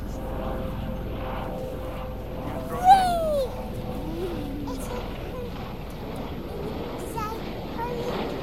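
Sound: helicopter flying overhead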